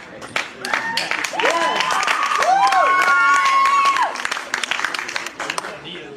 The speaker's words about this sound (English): You can applaud him, by the way, if you want.